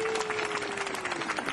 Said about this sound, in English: And with that, you get your own applause.